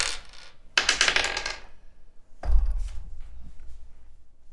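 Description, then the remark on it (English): Dice clatter across a hard surface in a few bright, rattling bursts, the busiest near the start, then a final tumble that settles into faint clicks. They are rolled in a game to decide whether a character's rifle was there at home. No one speaks. “Give me a roll to see if you found if your rifle was there when you got home.”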